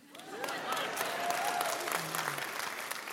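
A crowd claps and cheers steadily for about three seconds, a dense wash of hand claps with a few whoops and shouts rising above it.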